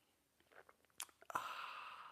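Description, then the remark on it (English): A few soft mouth clicks and lip smacks, then a sustained, airy slurp of someone sipping coffee that continues to the end, fairly quiet, with no talking. “It's called the simultaneous sip, and watch it go.”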